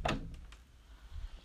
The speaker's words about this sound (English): I started walking to the door. I fished out my keys. And opened my door.